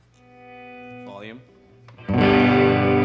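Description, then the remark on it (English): A steady electronic tone wavers and warbles, then about two seconds in a loud, gritty distorted sound bursts in and holds, thick and buzzing, dominant until the end. “Distortion.”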